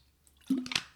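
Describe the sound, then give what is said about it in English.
A quiet sip and swallow of water: one brief wet slurp followed by a soft gulp, with no talking around it. “Just having a drink of water.”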